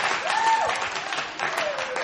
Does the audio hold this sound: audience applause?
yes